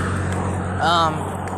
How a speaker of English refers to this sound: Don't mind the background. Got a few cars driving by. I'm going on a walk, so...